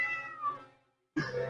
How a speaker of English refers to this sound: Frankie, shut up! The cat's stuck in the wall. How'd you get yourself stuck in a wall?